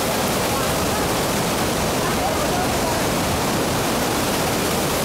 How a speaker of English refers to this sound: There's one problem. The Jordan River was at flood stage. So when I was in Israel, got a chance to take a video of the Jordan River at flood stage. Check it out.